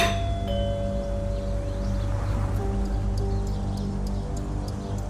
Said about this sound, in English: I'll ring the bell. Good idea.